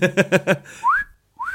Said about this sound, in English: whistled. Whistled?